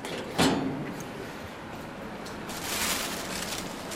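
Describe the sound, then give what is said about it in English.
A sharp knock, then a long rolling, sliding rumble as a large storage drawer glides open. It is one of rows of sliding drawers holding a collection of shoes. The rumble swells again near the end. It is fairly loud, with no one talking. “Laid out in rows of sliding drawers.”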